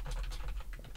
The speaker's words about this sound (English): I'm typing.